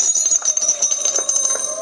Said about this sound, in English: And here comes the fire truck. Over on the right.